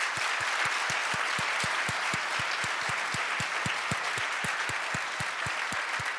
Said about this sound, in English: And so I just want to really give a handout to the Minneapolis Foundation team that has been behind the scenes planning, preparing, greeting you, arranging this meal for you. So please just give them an applause.